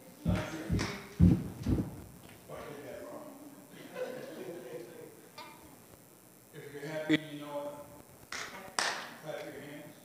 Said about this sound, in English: If you're happy, you know it. Clap your hands.